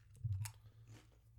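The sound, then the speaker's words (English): Crunching of nacho cheese Doritos tortilla chips being eaten: one sharp, brittle bite followed by a few softer chewing crunches, fairly quiet, with no talking. “Okay, so we can't chew into the microphone, but I'm going to have me some lovely nacho cheese Doritos right now.”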